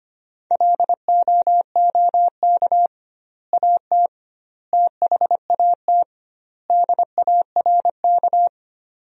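Fast Morse code at 25 words per minute, sending sentences built from the 500 most common words with double word spacing, in a single steady, mid-pitched beeping tone, keyed in quick dots and dashes with longer gaps between word groups. No voices.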